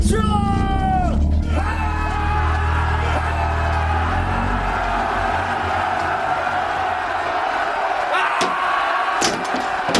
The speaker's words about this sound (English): Our little force went wildly yelling as they charged toward the Viking advance party.